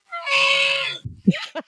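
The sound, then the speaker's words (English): An elk call: a long, high, strained whistling cry lasting almost a second, followed by a few short, lower grunting bursts. No one speaks over it. “I'm going to go for today. elk. Ooh, let's hear.”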